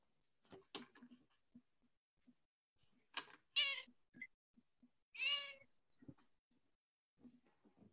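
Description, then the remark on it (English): Jordan's cats meow twice in loud, drawn-out, harmonic cries about a second and a half apart, with soft clicks and shuffling noises between them and no talking. “And a little quick shout out from Jordan's cats real quick.”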